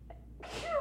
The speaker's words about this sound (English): I'm going to sneeze. Oh, boy. Bless you.